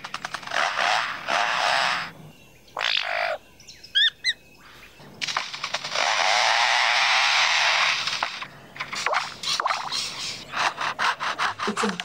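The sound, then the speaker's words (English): A lyrebird in a David Attenborough clip mimics foresters' chainsaws: loud rasping, grinding bursts, including one long sustained buzz, broken by a few quick high chirps and rapid clicks copying a camera's motor winder and shutter. No one speaks. “Have you seen the Attenborough clip of the lyrebird?”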